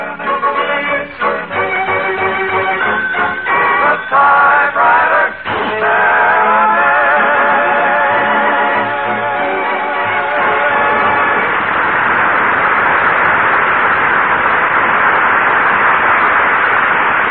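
Fast, clattering typewriter keys rattle nonstop into a dense, continuous mechanical chatter as a story is typed, preceded by a few seconds of musical tones with scattered sharp clicks. No one speaks.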